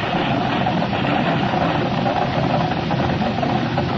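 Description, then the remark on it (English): A van speeds down a street, its engine roaring steadily: a loud, continuous low rumble with a gritty, vibrating texture that holds even throughout, with no voices. “Watson, look out that van. Screaming down the street.”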